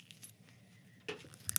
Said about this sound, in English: Yeah. Yeah, listen to that. These are little bottles. Huh? Clinky? Clink little bottle.